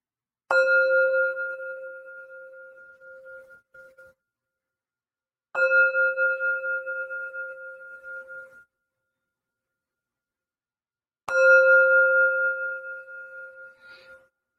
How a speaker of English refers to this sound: With the sound of this bell, our circle comes together.